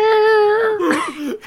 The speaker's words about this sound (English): That kind of sounds like Snickers, the dead cat.